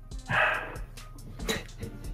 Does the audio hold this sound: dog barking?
yes